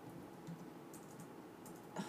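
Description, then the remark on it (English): A handful of soft, irregular clicks as a pet named Chicken steps across computer keyboard keys, faint, with no talking. “chicken is stepping on my keyboard.”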